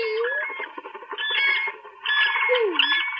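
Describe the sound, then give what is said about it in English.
Cranes calling with loud, trumpeting cries in three overlapping bursts, harsh and nasal, with no one speaking. “You cranes, you birds of the gods!”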